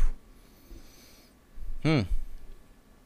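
A soft, drawn-out inhale from a vape, then a short, throaty exhale with a wheezy, voiced edge, with no talking.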